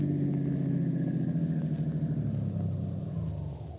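A car turns into a workyard and parks in a garage next to a truck; its low-speed engine rumbles, the steady hum gradually dropping in pitch as it slows, then fading away as it comes to a stop.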